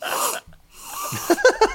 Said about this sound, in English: yes, take a little sniff of your drink.